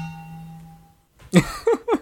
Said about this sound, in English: I have like an isolated metal bottle. Yeah, I have a big metal bottle that I fill with water every day. I can use it as a gong.